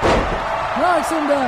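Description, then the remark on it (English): A heavy body slams onto a wrestling mat with a deep, booming thud right at the start as The Rock knocks Samoa Joe down, followed by voices and crowd noise carrying on underneath. “knocks him down again.”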